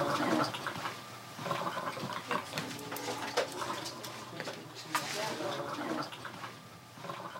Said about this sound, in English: You'll hear the death rattle. But all that is a collection of saliva in the back of the throat because the swallowing reflex is no longer working.